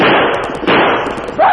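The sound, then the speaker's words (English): A sharp gunshot crack, fired at a dog on a cattle range, cuts through a loud, steady rush of background noise, with another abrupt bang near the end; no one speaks. “Hey, I think a bullet grazed him.”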